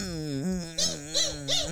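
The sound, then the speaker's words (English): A person vocally imitates a dog to tell a little dog to go away. It starts with a sustained whimpering whine, then three short, rhythmic yappy barks, clear with no other sounds. “Here, let me tell this dog to go away.”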